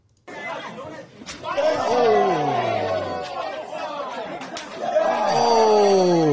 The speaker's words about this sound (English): He used to knock people out with slaps, bro.